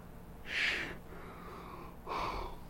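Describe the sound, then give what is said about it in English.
A breathy yawn: a sharp airy intake followed after a pause by a lower, softer exhaling breath, with no talking. “I haven't yawned like this much in a while.”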